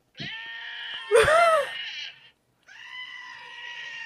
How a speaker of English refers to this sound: Dude, I've got this screaming goat app.